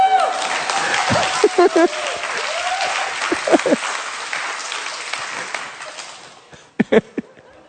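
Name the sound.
audience applause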